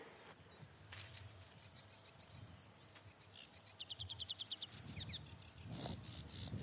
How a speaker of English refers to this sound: There's a sedge warbler. Much faster, urgent call than the slightly more languid reed warbler.